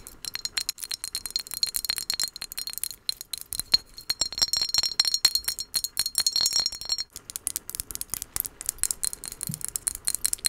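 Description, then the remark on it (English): Rapid, continuous tapping on glass, with bright clicking taps in quick irregular bursts, fairly quiet, with no talking. “Okay, glass tapping is another trigger that's a bit niche, so.”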